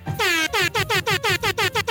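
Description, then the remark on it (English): A loud air horn sound alert blasts in a rapid series of about eight short, harmonic honks after one longer opening blare, piercing with no voices. “Not a single one of you use the goddamn air horn sound alert.”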